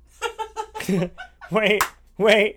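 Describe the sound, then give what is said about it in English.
A single sharp hand clap cuts through a stretch of voiced, laughing vocal sounds, a short bright smack landing midway between bursts of voices. “My clap was louder than everything.”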